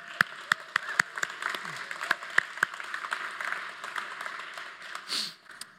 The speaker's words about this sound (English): So we don't do this often, but can I get a praise clap for God for that?